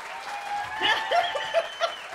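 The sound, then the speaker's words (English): A short burst of crowd applause welcoming a guest, dense steady clapping with a few brighter cheers and whistle-like tones rising above it, moderately loud throughout with no speech. “I just heard the applause.”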